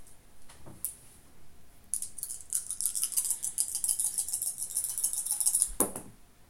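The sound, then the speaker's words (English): Busy rattling of four dice shaken for several seconds, clicking rapidly and unevenly, ending in a sharper clatter as they're thrown down. A faint knock comes just before. “Alright, 4 more dice.”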